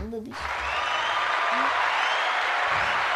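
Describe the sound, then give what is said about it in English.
A burst of steady, dense applause sound effect played from a sound pad, many hands clapping at once in a sustained wash of noise, loud and continuous after a brief voice at the very start. “and that's applause.”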